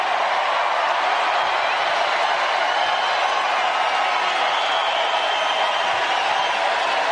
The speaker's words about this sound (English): Yes, I did feel it was necessary to play the cheering.